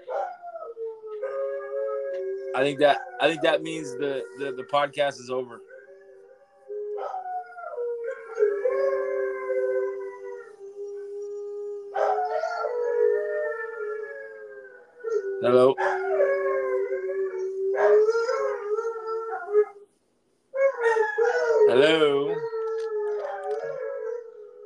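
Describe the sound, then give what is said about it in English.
Several Malamute dogs in a house howl together in long, wavering, overlapping tones that rise and fall, loud, with people briefly talking over the howling. “Can you hear the howls in my house? Yeah. They're harmonizing.”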